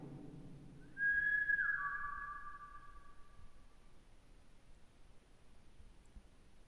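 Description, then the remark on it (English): A person whistles a single clear tone, steady then dipping slightly in pitch, ringing out for about three seconds before fading, with faint echo and no speech. “If I whistle, can you whistle after me?”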